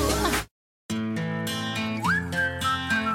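A catchy whistled pop melody rides over a full music backing with a steady beat, cutting out briefly after the opening before the whistle line comes back clear and sustained.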